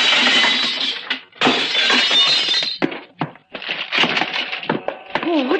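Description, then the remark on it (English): Loud glass shattering as a machine is smashed, in a series of violent crashes with sharp breaking bursts separated by brief gaps, followed by more clattering impacts and tinkling debris, with a voice briefly heard near the end. “Watch out for the flying glass”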